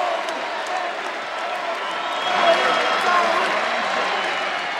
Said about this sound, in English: How about the roar of the crowd here? Being a great man. Exactly what he deserves. A standing ovation.